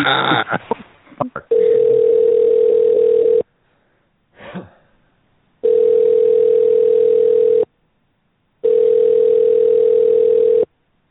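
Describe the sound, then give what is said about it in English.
A few clicks and handset rustles while placing a phone call, then a steady, loud telephone tone over the line, sounding in three long pulses of about two seconds each, separated by silent pauses. No one speaks. “Making a call with Kate about Wyndham.”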